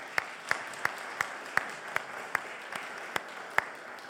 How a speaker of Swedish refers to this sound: Jag kan få en applåd till er.